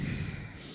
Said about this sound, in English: That's his bye. A little nostril breathing.